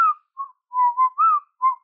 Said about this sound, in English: Lol. Yeah, don't you go casually whistling either.